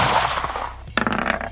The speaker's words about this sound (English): But let's do first Bumfuzzle rifle shot coming at you.